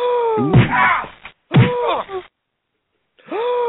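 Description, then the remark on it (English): Two sharp, fairly loud slap-like smacks land about a second apart, each mixed with strained groaning vocal sounds; after a brief silence, another drawn-out groan rises near the end. “Did you hear a slap or something like that?”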